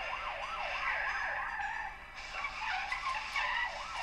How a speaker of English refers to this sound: Okay, and he's now in a car screeching around the same car park that he's just had a fight in.